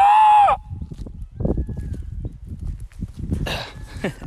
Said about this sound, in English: You can hear the peacocks.